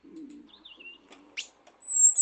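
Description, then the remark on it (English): A long-tailed paradise whydah calling: a few thin, wavering whistles and a quick rising chirp, ending in a louder, drawn-out high whistle, with a faint low rumble underneath at the start. “But let me play you the call of this long-tailed paradise wider.”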